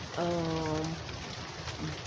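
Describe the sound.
Steady, dense hiss of falling rain with thunder fills the whole stretch, loud, with a person's voice speaking briefly over it near the start and again at the end.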